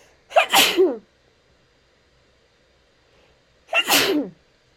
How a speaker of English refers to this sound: Oh, y'all, I am so sorry for the sneeze, and thank you to everyone who said bless you.